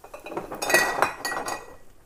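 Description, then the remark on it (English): A metal utensil clinking and scraping against a pot while stirring pasta, in quick, irregular strokes, fairly quiet, with no voices. “We stir the pasta a little bit.”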